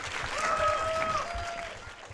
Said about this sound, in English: So we'll talk to Jeet for a second before we watch the movie. Everybody, big round of applause for Jeet here.